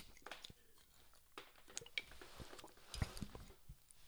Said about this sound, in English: Let me take a real quick sip.